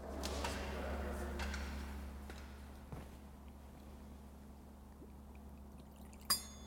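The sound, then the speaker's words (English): A faint, soft trickle of water being poured into wine in a chalice during a Catholic Mass, followed by a brief metallic clink near the end. “By the mystery of this water and wine, may we come to share in the divinity of Christ, who humbled himself to share in our humanity.”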